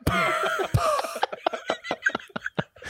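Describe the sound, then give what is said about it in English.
A wheezy, raspy cough: a strained, rattling wheeze for about a second, then a quick string of short, dry hacking bursts, fairly loud, with no talking. “It sounds like that fucking old dusty guy from Toy Story coughing”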